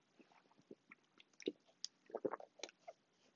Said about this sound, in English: So, time out. I got to take a drink.